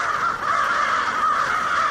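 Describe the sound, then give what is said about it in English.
A dense, continuous chorus of tens of thousands of crows cawing at once as they flock down from the sky at dusk in winter in Auburn, a small city southwest of Syracuse, overlapping harsh calls blending into a loud, steady wall of sound with no pauses and no talking. “A river of black wings, the air alive with noisy, hurrying birds flowing down from the sky.”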